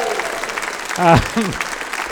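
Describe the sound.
An audience breaks into a steady round of applause, a dense crackle of many hands clapping, with a brief voice-like shout or whoop rising out of the clapping partway through.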